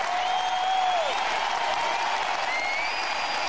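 A crowd applauds in a dense, steady wash of clapping that holds at an even loudness throughout, with a few thin whistle-like tones gliding faintly above it.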